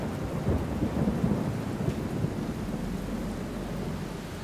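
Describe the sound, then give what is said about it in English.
Steady, heavy rain hisses continuously through a storm in darkness, with a deep low rumble of thunder rolling underneath. No voices, just the constant wash of rainfall at an even, moderate loudness. “For some minutes I lay there in the rain and darkness watching.”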